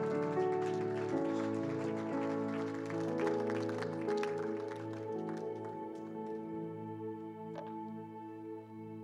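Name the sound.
audience hand clapping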